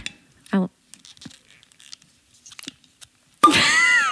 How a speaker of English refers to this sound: I'm just holding it so I can pop the bottle. It's a Kirk Vange wine. And so he's a pretty well-known winemaker in mm-hmm. the Napa and Sonoma region. So let me pop the cork on this bad boy.